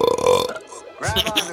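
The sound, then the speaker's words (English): Two short, croaky burps made by children, separated by a brief pause, the second one rougher and more gurgling than the first. “Those are the lamest burps ever.”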